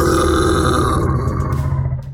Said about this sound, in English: and this giant maw made of it's got teeth made of thick stumps, and its mouth opens and a large bellow roars out.